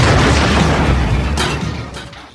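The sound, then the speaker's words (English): A loud cinematic explosion sound effect from a movie trailer: a heavy boom with deep rumbling low end that slowly decays, punctuated by a couple of smaller crackling bursts as it fades. “This is one of those with the I'm going to kick your explosion sound bits, which I think has been used in various other cinematic trailers as well, but to great effect here.”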